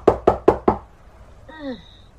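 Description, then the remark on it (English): Four quick, evenly spaced loud knocks on a front door, followed after a brief pause by a short high-pitched whine. “There's some more knocking at the front door.”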